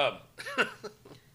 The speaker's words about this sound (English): Holy shit, that burp there. Heartburn. No, is that a burp?